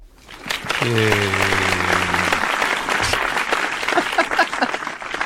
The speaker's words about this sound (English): Please clap. Oh my God. You did it right.